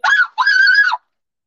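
Two loud, shrill screams in quick succession, the first short and the second longer and sustained, then silence.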